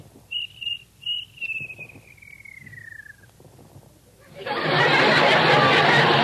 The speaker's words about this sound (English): Please, Mr. Cricket, George has work to do. Won't you please be quiet?